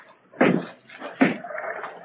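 The side door of an abandoned building next to a hotel is opened: two solid clunks of the latch and handle about a second apart, followed by a faint creak and rustle, with no one speaking.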